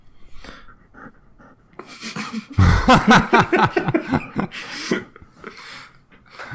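dog panting

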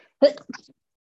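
sneeze

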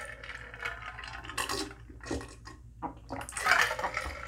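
ice rattling

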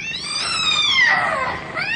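cat yowling and hissing

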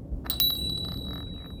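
bell ringing

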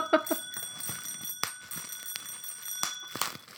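small bell ringing

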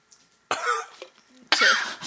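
cough

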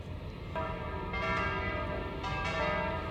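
church bell tolling

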